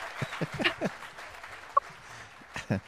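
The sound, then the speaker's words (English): A handful of uneven, scattered hand claps from a single person applauding themselves for a joke, soft and irregular, with brief vocal noises mixed in and one sharper snap in the middle. “I'm giving myself a round of applause for that one.”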